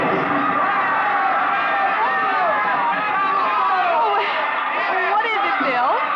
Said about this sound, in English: Mr. and Mrs. William Travis stood on the edge of the yelling crowd, smiling.